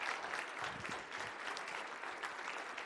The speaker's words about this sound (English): Can we give a round of applause to our new members this year?